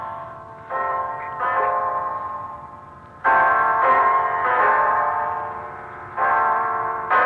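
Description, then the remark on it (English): A clock strikes ten o'clock with a series of resonant, ringing chimes, each tone lingering and overlapping the next at a steady, unhurried pace, fairly loud, with no voices. “It's 10 o'clock”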